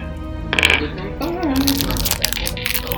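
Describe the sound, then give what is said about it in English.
A brand new pack of plastic dice is opened, the dice clattering and clicking in a quick, irregular rattle with crinkly unpacking noises, fairly loud, while a person briefly vocalizes over it. “Open up brand new dice.”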